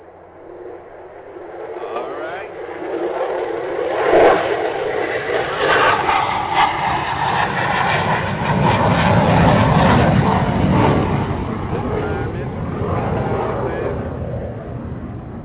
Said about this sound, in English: Okay, let me get this big iron bird on up off the ground. I rubbed my two little coins together and bought me an airplane, ladies and gentlemen.